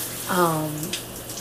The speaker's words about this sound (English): and yes, I'm in the shower. Good background music.